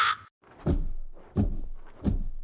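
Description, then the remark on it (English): A short crow caw gives way to three heavy, whooshing wing flaps as a crow flies out to sit on a roof, evenly spaced, each a deep rushing beat with no voices. “I want to turn into my battle crow and fly out and sit on top of the roof and watch and wait.”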